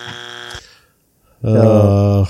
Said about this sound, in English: So, I don't know, dude. I think I'm still giving you the buzzer for that one.